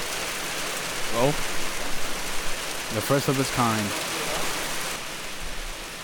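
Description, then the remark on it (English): Steady, dense rain hisses continuously outdoors, an even wash of patter filling the whole stretch, with brief bits of speech rising over it midway. “Outside in the rain. I didn't expect it to rain, to be honest with you.”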